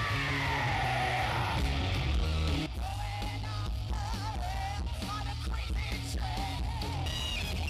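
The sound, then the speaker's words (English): A loud, dense wall of crowd noise at a tribute show for a singer, many voices yelling, whooping and screaming together, sustained for several seconds over a steady low rumble, with a brief dip partway through before the cheering surges on. “Let's hear for …! Scream for …!”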